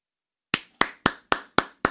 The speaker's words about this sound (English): Oh, I'm sorry. Am I not supposed to clap?